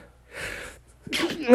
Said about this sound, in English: Wait, I'm sneezing.